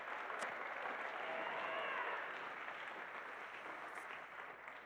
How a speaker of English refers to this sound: Hey, who started that round of applause back here? Right there, let's get after it this morning.